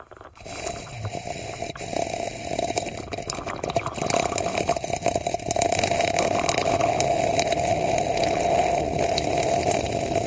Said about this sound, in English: Let's decide this via a slurp off, shall we? Okay. Bearing in mind my tea's cold.